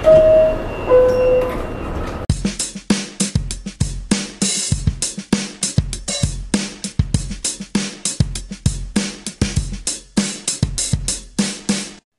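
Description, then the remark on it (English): A two-tone descending chime rings out as subway train doors close, then the train rumbles and clatters with steady rhythmic knocks as it pulls away and keeps rolling, loud. “Next stop, Daily Thoughts. Stand clear of the closing doors, please.”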